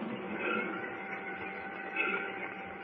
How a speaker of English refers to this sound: What's that? Well, I believe it's a train. Why, you're right. We're at the railroad station.